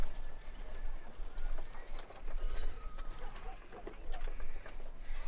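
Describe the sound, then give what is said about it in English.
Horses shifting about in a stable, bundled into one corner sharing one bale of hay, with scattered, irregular hoof clops and thuds over a steady low rumble of background noise, and faint murmuring voices. “You look down and you can see the stables. You can see your horses.”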